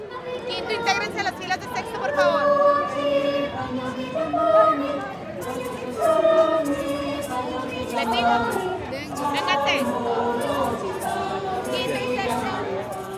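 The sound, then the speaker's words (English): A crowd of uniformed schoolchildren from different schools chattering in the plaza (explanada) of a venue by the IMAX theater La Bola during the visit of the giant puppet Amal, a dense, steady babble of many overlapping voices with bright calls and shouts of her name rising above it now and then. “Students would yell her name out to have the giant puppet meet her eyes with theirs.”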